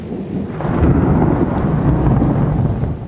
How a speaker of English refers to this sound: But we see lightning before we hear thunder, so it doesn't seem like they're the same thing. But they are. Light travels really, really fast, much faster than sound. So we see the lightning before we hear the thunder.